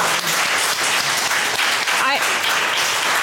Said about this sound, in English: To our guests as well, a round of applause. Thank you both so much for sharing everything you've shared today.